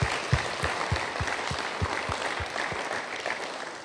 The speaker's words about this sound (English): So, church, why don't we give everyone here, I'm sure there's a lot of people that have done that today, a round of applause.